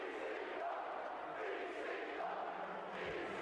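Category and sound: crowd, arena crowd chanting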